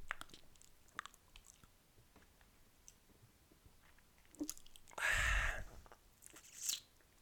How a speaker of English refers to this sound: You got some chick eating this crab, just breaking all the things, like, and then sort of take it and just like slurp it. They always do the biggest gulps, like the biggest chews.